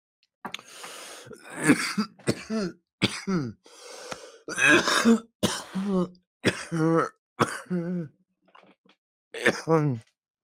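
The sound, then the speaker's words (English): A fit of harsh, repeated coughing with throat clearing after smoking from a small e-nail rig with a glass banger, about a dozen bursts in irregular succession over ten seconds, fairly loud, with strained voiced rasps between them. “I would say it doesn't make you cough as much, but that's not true.”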